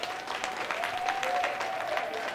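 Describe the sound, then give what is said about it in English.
A church audience applauds for their church steadily, dense overlapping claps forming a continuous wash of sound with a faint held tone running underneath. “So clap for our church.”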